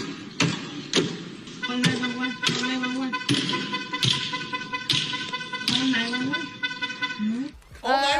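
A hammer strikes a car again and again, sharp metallic bangs landing about once a second while a car horn blares continuously underneath, ending with a louder clatter.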